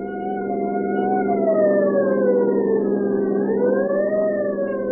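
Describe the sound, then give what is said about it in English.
A loud siren wails continuously, its pitch sliding slowly up and down over the steady, rumbling din of a driving rainstorm as a deputy sheriff's car speeds through the gathering night, with no voices present. “The scream of a siren knifes through the din of a driving rainstorm as Deputy Sheriff”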